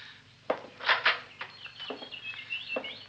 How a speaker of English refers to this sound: Quite a collection of canaries you've got here. Yes, I have.